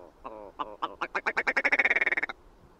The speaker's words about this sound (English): Like a mallard. Hit me with a mallard. There you go. That's actually really tough because they sound a lot like a black duck.